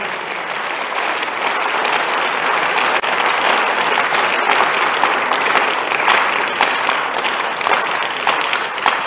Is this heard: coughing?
no